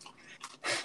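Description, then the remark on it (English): Wet, squishy chewing sounds in a few short bursts, the last one loudest and longest, as a man munches gummy worms, with no talking. “This dude is munching on some motherfucking gummy worms.”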